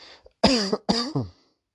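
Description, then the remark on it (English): Two harsh, raspy coughs from a persistent cough in quick succession, fairly loud, each with a rough throaty tail, preceded by a faint breath. “As you can hear, my cough is still kind of a bit persistent.”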